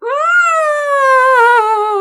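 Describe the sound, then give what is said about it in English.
A person imitates an elephant's trumpet, holding one loud, brassy, high-pitched wail for about two seconds that swells briefly and then slowly sinks in pitch, with no talking around it. “No, an elephant sounds more like this.”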